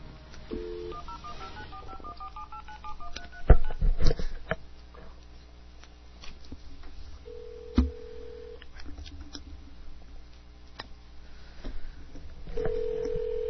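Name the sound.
telephone dialing beeps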